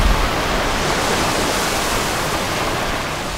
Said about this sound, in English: We're in Australia at the Indian Ocean on a beach, like just hanging out